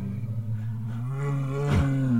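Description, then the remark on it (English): A massive grizzly bear's low growl from the nearby brush: a deep sustained rumble that swells louder and rougher toward the end, lasting about two seconds with no voices. “When he was almost at the point where he was about to leap down the last few feet, he heard a low growl.”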